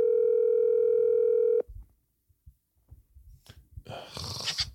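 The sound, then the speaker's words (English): A phone's ringing tone, from a call to a person's daughter who has just arrived, sounds once as a steady electronic hum for about a second and a half, then cuts off abruptly, followed by faint handling thumps and a louder rustling hiss. “Let me call these little biatches.”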